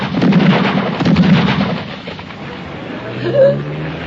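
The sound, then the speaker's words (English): Two heavy, booming gunshot blasts, fired from a car by a man wearing a mask, roll out about a second apart, followed by a quieter rumbling stretch and a brief vocal sound near the end. “Quick. Oh, my God, I'm shot.”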